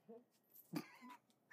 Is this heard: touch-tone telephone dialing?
no